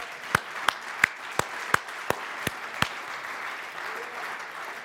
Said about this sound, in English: I think we ought to give the Lord a hand clap for this.